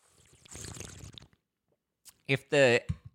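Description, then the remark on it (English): A wet slurp of a drink lasting about a second, then a pause followed by a short gulp and a breathy, voiced exhale, as someone has a drink at sunset in Los Angeles, Southern California. “If the drinking and the slurping annoys you, I know it kind of annoys me too.”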